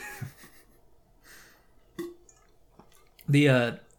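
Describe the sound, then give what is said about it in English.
Quiet slurping sip of water followed by a couple of small wet gulps and mouth clicks, before a voice starts up loudly at the end. “All right, I need a sip of water.”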